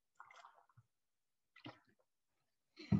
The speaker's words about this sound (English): Let me just take a little drink of water.